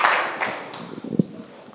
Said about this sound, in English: Clap your hands for Jesus as you take your seats.